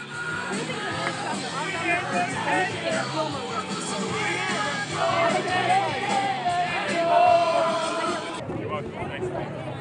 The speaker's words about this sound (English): they're now playing "…," and hundreds of people here at the state capitol are screaming along